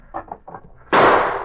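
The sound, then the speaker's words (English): A single loud gunshot, fired at someone hiding at a desk in an office, bursts out suddenly after a second of low, muffled murmuring, its sharp crack trailing off into a brief rumbling decay. “I won't miss next time.”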